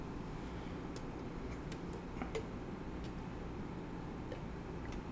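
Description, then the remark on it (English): Beer pours steadily into a glass, a constant wash of liquid noise sprinkled with sharp little fizzing crackles and pops from the foam, with no one talking. “There's a good pour.”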